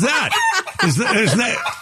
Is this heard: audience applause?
no